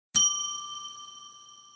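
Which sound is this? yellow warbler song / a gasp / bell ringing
bell ringing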